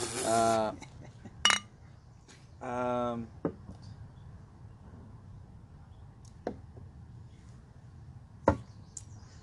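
Beer glasses clink together in a toast: a few sharp, bright taps spaced apart, with a couple of short vocal sounds near the start.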